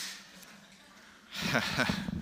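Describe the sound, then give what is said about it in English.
A quiet, hissy stretch gives way to a loud nose blow: a sustained, rough burst of air with honking tones, running for about a second. “We have to blow my nose.”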